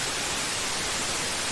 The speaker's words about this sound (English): This is grey noise.